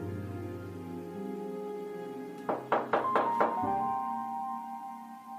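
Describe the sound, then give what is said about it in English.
A quick series of about five hollow knocks on a door, evenly spaced and fairly loud, rapped over a steady droning musical background with no one speaking. “I'm at the door from whence this strange knocking is emanating.”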